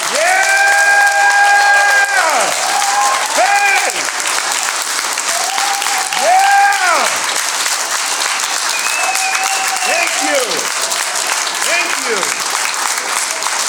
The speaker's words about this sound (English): If you're in any of the branches, if you served in any of the branches of the military, could you please stand right now? Can we truthfully clap them? Not just a golf clap, come on.